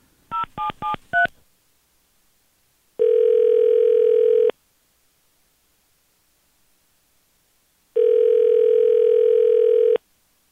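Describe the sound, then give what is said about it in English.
A crank phone call being placed to PetSmart: four quick keypad dialing beeps, then two long, steady ringing tones separated by a pause of silence. No voices are heard. “It's a crank call this morning here on the Hawk and Tom Show.”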